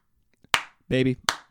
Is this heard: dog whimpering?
no